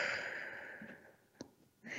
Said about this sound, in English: really taking a deep breath. In through the nose, all the way to your toes, and then out through your mouth, like through a straw.